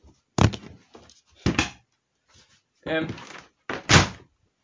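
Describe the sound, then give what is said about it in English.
A door closing: a few dull, heavy thumps spaced about a second apart, moderately loud, mixed with short vocal noises but no clear words. “Door closed.”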